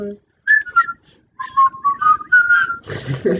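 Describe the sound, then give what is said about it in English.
A person whistles a short melodic tune in clear, steady tones, with brief pauses between phrases, and a burst of talking breaks in at the end. “It's the only reason, like I practiced, like I started whistling, like in real life, like because of that, because I was like, I wanted to like actually be able to do it.”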